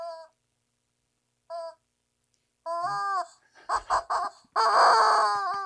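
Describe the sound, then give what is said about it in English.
A squeezed rubber toy chicken squawks: two short honks, then a drawn-out squeal, a few quick stuttering bursts, and one long, loud wheezing squawk to finish. No one speaks. “And then I'll squeeze that chicken.”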